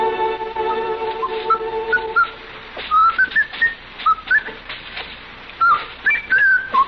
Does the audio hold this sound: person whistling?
yes